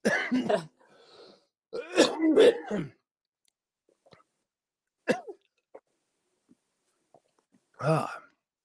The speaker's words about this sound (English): I'm going to cough.